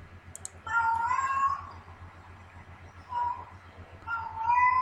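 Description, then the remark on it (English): A cat meows in drawn-out, wavering cries, two long calls with a shorter one between, heard through a video playback over a steady low hum. “We get it. It's a cat video.”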